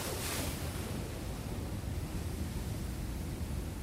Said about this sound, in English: Eight, the ocean.